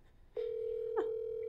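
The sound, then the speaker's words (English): A phone line tone as a call rings out: a steady, fairly loud electronic hum that starts with a click and holds without a break, with one more brief click partway through. No voices. “I told him I was calling him.”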